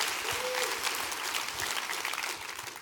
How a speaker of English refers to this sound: Come on, clap your hands all around his house.